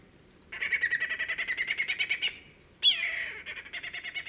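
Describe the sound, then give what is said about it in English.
A whistling kite calls clearly, with a rapid series of shrill piping notes, a sharp descending whistle, then another quick staccato run. No voices. “That's a whistling kite, not a night parrot.”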